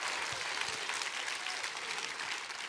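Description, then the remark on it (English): A crowd claps steadily for a few seconds, dense overlapping hand claps at an even loudness, with no voices standing out above the applause. “Come on, clap your hands real big.”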